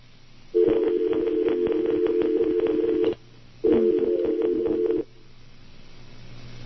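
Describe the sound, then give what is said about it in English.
A harsh, crackly telephone dial tone sounds twice over a phone line, first for about two and a half seconds, then after a short gap for over a second, with low line hum between. “And when you punch them up, when you punch them up cold, just to get the dial tone, they all sound like that.”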